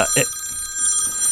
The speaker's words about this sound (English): It must be important. I should probably just take it. Can you just silence your cell phone for a second?